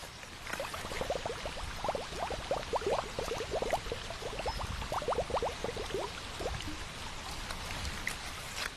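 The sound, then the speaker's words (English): River water gurgles and bubbles as a container is filled with a water sample, a quick run of glugging splashes lasting several seconds over a steady rushing wash of running water, with no voices. “Let me get this sample of river water.”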